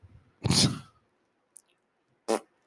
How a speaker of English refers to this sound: What was that? … farted.